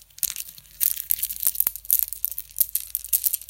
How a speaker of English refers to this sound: You are like the sound of a bamboo necklace, and I'm just going to let you hear what that sounds like.